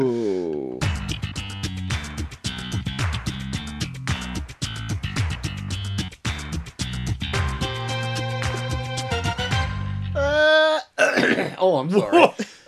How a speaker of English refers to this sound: Since we're all coughing, I thought I'd clear my throat.